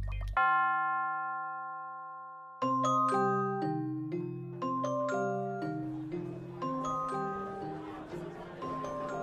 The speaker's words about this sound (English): The cabin boy went to ring the dinner bell.